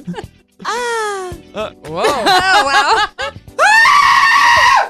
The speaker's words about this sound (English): That's a pretty good yell.